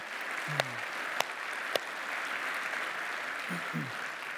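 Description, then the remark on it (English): A crowd applauds two stories just shared, a dense wash of many hands clapping at moderate volume, with a few sharper individual claps and a brief low voice murmuring beneath. “Yeah, clap for those.”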